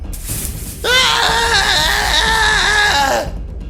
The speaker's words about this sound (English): You've really been into slides lately. I enjoy hearing your girlish scream.